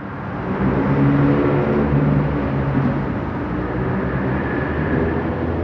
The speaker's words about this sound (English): Normally that noise from that traffic would have probably been overwhelming. I didn't even pay attention to it.